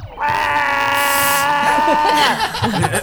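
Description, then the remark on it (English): During a tabletop role-playing game, a player voicing the character Irsu, on Irsu's turn, lets out a long, steady, high-pitched shriek for about two seconds, loud and eerie with a bleating edge, then it breaks off into muffled talk. “Irsu lets out an unearthly shriek, Okay.”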